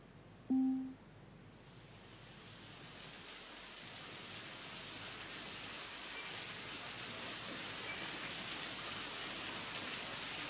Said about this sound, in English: So now we're hanging out in the rainforest. So as you can see, there's a huge amount of sounds there that you can play with.